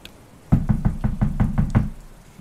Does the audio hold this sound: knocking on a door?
yes